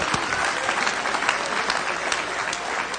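An audience applauds the Lord together, a dense, steady wash of clapping that holds at an even loudness for about three seconds, with scattered sharper claps and faint voices mixed in.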